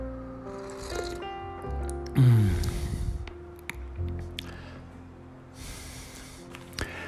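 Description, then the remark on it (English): A single loud, wet slurping sip of tea in A Coruña rises abruptly and fades over about a second, followed by soft breaths and small clicks against a steady low hum, with no talking. “It had been a long time since I had my tea while greeting you and that classic sip, at least for some of you who have been following long enough to know what I'm talking about.”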